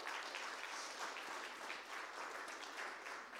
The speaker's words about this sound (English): Give Alex a big round of applause.